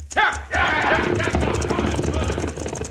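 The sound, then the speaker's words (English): Horses' hooves pound away in a fast, rhythmic clip-clop as several outlaws mount their horses and gallop off in the pass over Rocking Chair Mountain, loud, over a low rumbling undertone that carries through to the end. “Now, with the stage escaping down the mountain, all the outlaws but one mount their horses.”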